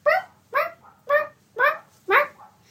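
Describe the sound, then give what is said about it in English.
A child's voice imitates a wild turkey call: five loud, evenly spaced gobbling bursts, each rising then falling in pitch, about half a second apart, with no other talk. “And wild turkeys are pretty cool. They make a sound that's kind of like...”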